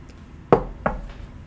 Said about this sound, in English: You should have a more secretive knock, by the way. That was just three knocks. Anybody could have done that.